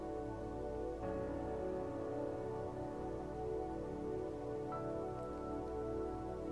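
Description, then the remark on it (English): A waterfall's flowing water rushes in a steady, unbroken roar with a soft hiss on top, holding an even loudness throughout with no voices. “Hear the sounds of flowing water.”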